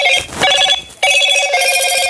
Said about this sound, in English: I do apologize for that obnoxiously loud damn announcement. I'm going to turn off those notifications.